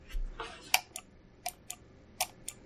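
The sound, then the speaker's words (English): A computer mouse clicks five or six times at an irregular pace, each click short and crisp but fairly quiet, with faint background hiss and no talking. “For fun, I just turned up my sound all the way, and I can hear the clicking of your mouse.”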